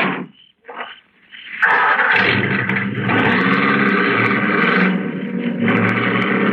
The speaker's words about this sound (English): And then the car was stopping.